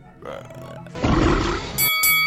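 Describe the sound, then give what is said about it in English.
The Sarlacc pit creature lets out a deep, wet, rumbling belch lasting about a second, loud, after a softer lead-in and followed by a bright, high ringing tone. “It's much better than a burping pit.”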